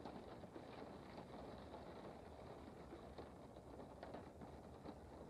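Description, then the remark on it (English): A low, steady rumble of an idling train engine at a dimly lit station platform in drizzling rain hums on continuously at a quiet, even level, with no voices or distinct events breaking the drone. “You only hear the subtle rumble from the train's engine.”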